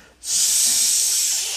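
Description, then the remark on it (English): A voice imitates a snake with one long, steady hiss, loud and sharp, starting abruptly after a brief pause and holding evenly for over a second before easing slightly; the hiss of the snake in the leaves during a reading of The Gruffalo. “They walked and walked till the Gruffalo said, I hear a hiss in the leaves ahead.”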